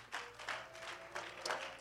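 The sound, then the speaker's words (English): An audience claps their hands to the Lord in a steady, roughly even beat, the bursts fairly soft, with a faint sustained musical tone lingering underneath. “Can we just clap our hands to the Lord right now?”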